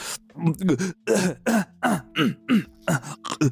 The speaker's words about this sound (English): By the way, we got the most positive feedback from last week's episode with you clearing your throat and burping during the entire interview.